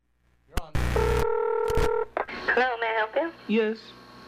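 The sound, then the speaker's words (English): A click and a short burst of static, then steady dual-pitched telephone keypad tones sounding for about a second as a key is pressed on a call to Movie Phone, followed by a person talking with a slightly tinny quality. “If this is the first time using Movie Phone, press 3 now”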